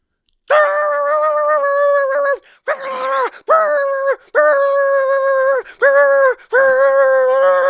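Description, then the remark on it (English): A person imitates a dog barking nonstop, voicing loud, drawn-out, strained barks in a run of long bursts separated only by brief breaths. “Barking continues. Does not stop.”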